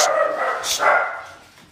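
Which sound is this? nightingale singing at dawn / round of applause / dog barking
dog barking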